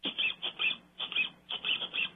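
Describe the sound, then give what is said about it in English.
A rubber duck squeaked over and over, about nine high, shrill squeaks in a quick, uneven rhythm, some paired closely together, fairly loud with no talking. “A rubber duck is funny, like ducks are funny.”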